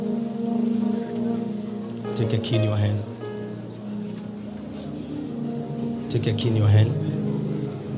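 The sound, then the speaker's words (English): Keys jingle and rattle in people's hands in a couple of short bursts as they take a key in hand, over a steady murmur of voices and room noise. “Take a key in your hand.”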